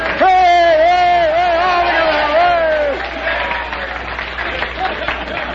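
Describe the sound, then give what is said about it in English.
A sustained voice holds a wavering note for about three seconds, then a wash of audience applause takes over, a steady patter of many hands clapping with crowd noise. “What are you applauding, those people or what?”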